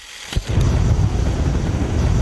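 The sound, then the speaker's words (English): A sudden burst gives way to a steady, loud roar of methane leaking from melting tundra in the Siberian Arctic and set on fire, deep and rumbling like a jet engine, with a hissing edge over a heavy low rumble. “You might think you're hearing a jet engine, but it's actually methane leaking from the melting tundra in the Siberian Arctic that's been set on fire.”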